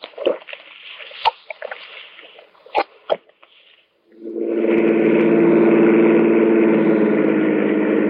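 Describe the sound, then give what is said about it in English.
A few seconds of scattered knocks and clatter, then the engine of a car driving in traffic comes in with a loud, steady, rumbling drone that holds constant to the end. “We got fouled up in traffic.”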